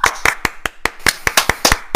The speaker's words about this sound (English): Can we get an applause? Massive, man. We need sound bites. We need sound bites. Someone needs to give him an applause.